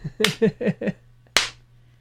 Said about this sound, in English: That's the slow clap. I invented it in this dimension.